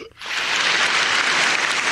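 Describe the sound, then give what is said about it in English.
A crowd bursts into loud cheering and applause after a brief quiet moment, the dense clapping and roar sustained and steady for the rest of the stretch. “The crowd goes wild.”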